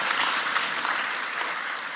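A church crowd breaks into sustained applause for the word of God, a dense, steady wash of many hands clapping together at an even loudness for the full two seconds, with no voices standing out.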